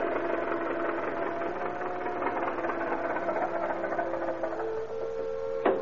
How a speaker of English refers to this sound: On a small road leading out of Latigo Canyon, a Model T Ford sedan crawls to a shuddering halt.